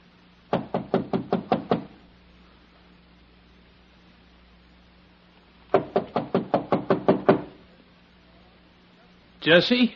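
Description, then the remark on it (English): Two quick bursts of firm knocking on an apartment door at the head of the apartment house stairs, about seven raps each with a pause between, fairly loud, then a brief rustling thump at the end; no talking. “Why didn't you answer my knock?”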